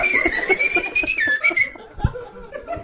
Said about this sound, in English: Did you see this crazy homeless guy wearing a gay blue shirt whistling?